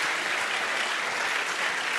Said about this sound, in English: Oh, give the Lord a clap offering. This is a very powerful testimony.